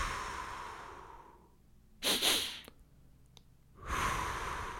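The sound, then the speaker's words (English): A person doing double barrel breathing during breath work, with no talking: a quick double sniff inward through the nose, a pause, then a long, steady, airy exhale out through the mouth. “he gets you doing this, you know, double barrel breathing, which is like, you know, you take it in through the nose, like, and then out through your mouth.”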